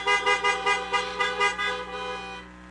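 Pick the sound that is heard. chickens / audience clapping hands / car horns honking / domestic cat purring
car horns honking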